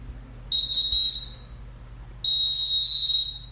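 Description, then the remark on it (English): Two long, steady, high-pitched human whistles, one short and one longer, separated by a brief pause, fairly loud with no talking. “Yes, whistle.”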